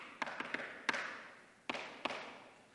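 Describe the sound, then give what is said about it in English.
A secret knock on a house door: a quick run of sharp raps, a pause, then two more spaced strikes, each crisp and ringing briefly, with no voices. “He knows the secret knock.”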